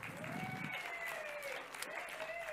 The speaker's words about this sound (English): Let's give him a clap.